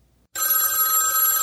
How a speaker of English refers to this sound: When the phone rang again, he nearly jumped out of his skin.